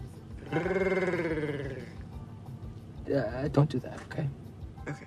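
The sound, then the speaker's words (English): A person mimics a lion's roar with a long, strained, wavering growl lasting over a second, followed by a shorter burst of gruff, choppy vocal noises. “And you're going to slam down. Like a lion.”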